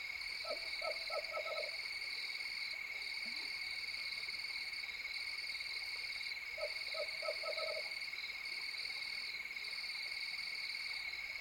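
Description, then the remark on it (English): A western screech owl, a tiny owl about 8 or 9 inches tall, calls from mesquite around the Santa Elena Canyon parking lot along the Rio Grande. It gives two bouts of short, hollow toots that speed up like a bouncing ball, over a constant high-pitched drone of night insects. “I drive several miles upriver to the Santa Elena Canyon parking lot, and I'm delighted to discover a western screech owl tooting from the surrounding mesquite.”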